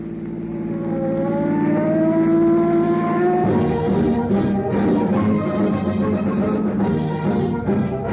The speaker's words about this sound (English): On the busiest street of the West's largest city, streams of traffic speed endlessly by. At the intersection of a quiet side street, a car waits impatiently for an opening to cross the boulevard.